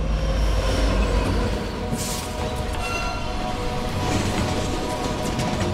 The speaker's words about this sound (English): Today, 413 is on the upper branch. Signals tell the freight train to slow, then stop completely.